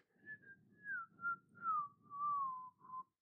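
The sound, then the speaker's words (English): Soft, breathy human whistling carries a slow, wavering tune of several sustained notes that gently slide downward, with an airy hiss underneath throughout. “I'm gonna whisper whistle.”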